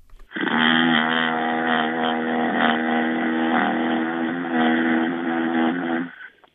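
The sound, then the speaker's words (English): A steady, droning motor-like hum with a low buzzing tone, the constant low-frequency hum reported in Hueytown, Alabama, like a motor or fan constantly running, holds at an even, fairly loud level for about six seconds before cutting off, with no voices present. “It's like a motor or a fan that is just constantly running, and it just creates a humming type sound.”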